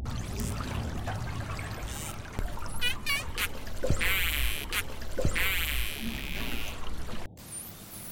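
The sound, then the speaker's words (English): Underwater calls of the Indo-Pacific humpback dolphin, also called the Chinese white dolphin: a few quick, rising whistles, followed by loud stretches of buzzy, crackling click bursts, over a steady low rumble and hiss. “And hear the sound of the Chinese white dolphin or the Indo-Pacific humpback dolphin.”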